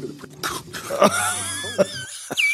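A man coughs in several harsh, choking bursts as a bug comes toward his mouth, as if something is caught in his throat, with strained throat-clearing sounds between them. The coughing is fairly loud, and no one speaks.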